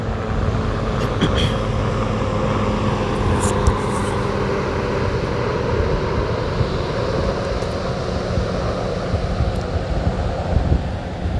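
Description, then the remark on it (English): A helicopter drones overhead for the whole stretch, a steady low rumble mixed with gusty wind noise on the microphone and no voices. “That's with the helicopter that fly past by and everything.”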